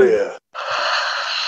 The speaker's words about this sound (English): But this man is yawning. It's 11:18 there. This man is 40 years old.